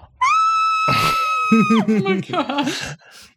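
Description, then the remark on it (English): A voice imitates someone biting her own wrist and screaming into it: a high, strained, muffled wail, then a burst of breathy noise and a run of choppy, wavering cries, fairly loud, lasting about three seconds. “biting her own wrist right now and screaming into it like this.”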